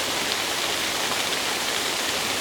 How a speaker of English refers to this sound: We've got a little round pool in front of the cascading waterfall. What a bit of water running between the rocks in the middle.